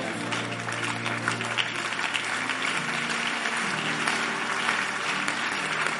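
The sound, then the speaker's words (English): An audience claps steadily for several seconds, a dense, continuous wash of many hands with no clear rhythm, while sustained low tones hum beneath the applause. “As you are clapping, I see something happening to you.”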